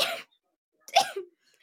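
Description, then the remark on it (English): A brief breathy burst, then after a pause a sharp sneeze with a short voiced tail, heard alone with no talking. “that was such a weird sneeze.”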